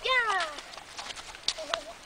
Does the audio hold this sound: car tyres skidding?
no